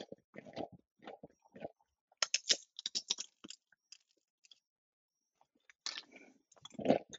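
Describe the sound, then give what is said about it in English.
Loud crunching of a tortilla chip being chewed, with sharp crackly bursts in irregular clusters separated by brief quiet pauses; no one speaks. “Lots of crunching.”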